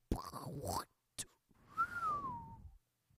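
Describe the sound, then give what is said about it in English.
A person whistles a fairly loud whistle that slides steadily downward in pitch over about a second, like something dropping. Just before it come a brief warbling vocal noise and a sharp click. “I did the whistle that time. Kind of like it was like dropping.”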